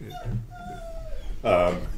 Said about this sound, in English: well, that was pathetic. A dog is not happy with this.